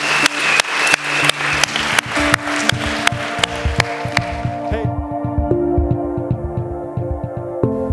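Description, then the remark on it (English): A round of applause for six people who raised their hands after a prayer rises over sustained keyboard chords, with a steady rhythmic clap running through it; the crowd noise fades after about five seconds while the music and beat carry on. “Can we give these six individuals that raised their hand a huge round of applause?”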